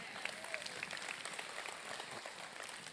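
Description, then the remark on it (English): A crowd applauds with dense, steady clapping that fills the whole stretch, many hands overlapping into a continuous crackling wash with no clear individual rhythm. “Come on, you clap your hands for that.”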